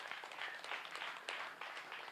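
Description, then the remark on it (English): An audience applauds during a sermon with dense, steady clapping spread across many hands, a continuous crackling wash of claps at moderate volume with no voices on top. “Y'all can clap.”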